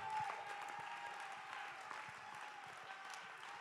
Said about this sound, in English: Somebody clap. Somebody lift your voice. Somebody give him praise.